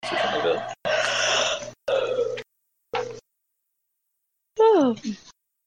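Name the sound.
yawning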